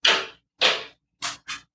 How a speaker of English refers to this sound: Excuse me, he's knocking on the door.